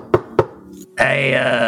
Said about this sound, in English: I mean, the guy said there's people in there. I'm just going to knock.